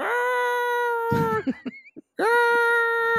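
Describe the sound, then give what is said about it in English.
A parrot named Bailey makes a chicken-like call on request twice, each a loud, drawn-out, steady-pitched squawk lasting about a second, with a few short clucking chirps and a brief pause between them. “Make some noise, Bailey. Kind of a chicken sound.”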